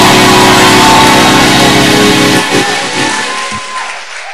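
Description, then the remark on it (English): An audience breaks into loud, sustained applause and cheering in praise of God, a dense wash of clapping and voices that holds steady, then gradually thins and fades toward the end. “Somebody give God praise in the house.”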